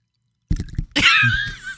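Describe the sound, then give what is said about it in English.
Liquor is poured close to the microphone into a shot glass: a few quick gurgling glugs, then a bright, steady splashing stream lasting under a second, with no talking. “No, you need to put that up to the mic when you pour it.”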